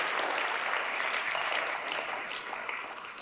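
A crowd claps steadily for a helper at a Christingle workshop, a dense, sustained round of applause, bright and crackly, holding at an even level for a few seconds without any voices.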